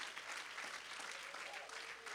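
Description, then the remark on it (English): A church audience applauds the fathers standing in the service, a dense, sustained wash of many hands clapping at once with no pauses, holding an even loudness throughout. “Every dad, I want you to stand right now, and I want us to applaud these dads that are in the house of God.”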